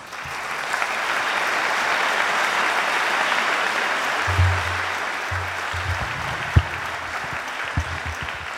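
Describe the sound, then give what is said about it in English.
Sustained applause from an audience at a University of Southern California event, welcoming Provost Michael Quick, a dense, steady wash of many hands clapping that holds at an even level throughout, with a few low thumps near the end. “Wow, thank you for applauding a provost.”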